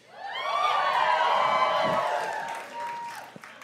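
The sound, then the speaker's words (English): A live audience breaks into loud cheering and whooping, many voices swelling together and holding for a couple of seconds before tapering off into scattered shouts. “You're cheering being criminals.”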